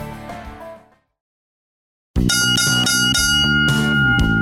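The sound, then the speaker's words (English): A ringing tone fades away into a brief silence, then a loud, bright jingle of bell chimes, the Four Bells radio jingle, strikes up and rings on in quick succession, with no voices. “It's Four Bells. It's the saddest sound in radio”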